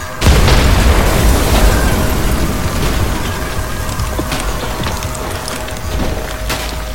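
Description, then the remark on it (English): A sudden loud explosion as a blast is angled into torture machines, then a dense, rumbling clatter of metal machine debris keeps raining down for several seconds, with scattered sharp clanks and rattles throughout. “Even as the mechanical debris rained down on my opponent, it countered.”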